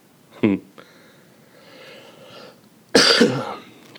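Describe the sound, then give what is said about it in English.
A congested person coughs: a short, sharp cough, a quiet pause, then a louder, harsher burst of coughing and throat clearing that rasps for about a second. “So, yeah, and I mean, I'm going to probably be coughing this whole app.”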